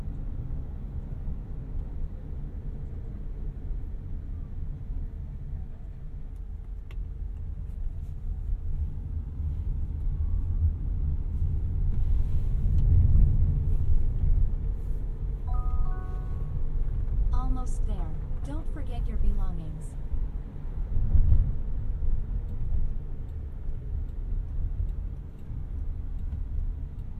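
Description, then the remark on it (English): Steady low road rumble from inside a moving self-driving car on East Indian School Road, swelling slightly midway as it smoothly accelerates, decelerates and turns while finding a spot to pull over in a parking lot, with a short run of soft electronic chimes and faint ticking toward the end. “The first time I rode in one of these cars, sometimes the movements were jerky, but this time the acceleration, deceleration, and turns were all as smooth as butter, even when finding a spot in the parking lot.”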